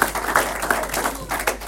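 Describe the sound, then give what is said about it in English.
A short burst of hand clapping, a quick run of sharp, irregular claps at moderate loudness, with no voices over it. “Oh, clap for me.”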